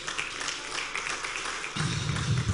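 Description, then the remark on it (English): An audience applauds Jesus during a sermon in a dense, steady wash of many hands clapping, with a deeper rumble of crowd noise swelling in for the last second. “Give Jesus a mighty clap, offering somebody.”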